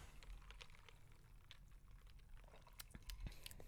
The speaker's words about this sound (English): Okay, hold on. I'm excited to take the first sip.